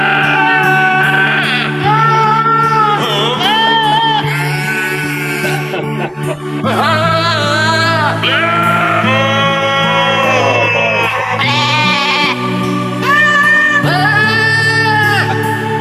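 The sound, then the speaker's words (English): Loud, wavering goat bleats from a goat-edition Christmas album by ActionAid Sweden follow one another almost without pause, strung together into a slow, sung-like melody of Silent Night over steady low sustained tones. “So yeah, I love the goat edition.”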